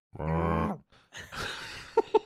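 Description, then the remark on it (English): A deep, droning cow moo with a buzzing harmonic tone, then a rough, noisy growl-like burst ending in two sharp, punchy hits. It sounds like a video game cow attack effect. “A herd of cows has appeared. It's definitely doing? The best thing about them is their attack noise.”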